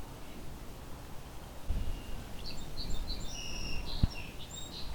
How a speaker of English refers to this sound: song sparrow behind me.